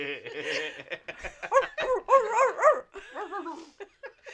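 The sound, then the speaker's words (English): A person imitates a dog barking with a loud series of yappy, pitched woofs and whiny yips, several quick barks in a row with short pauses between. “And then I turn around and I bark some more.”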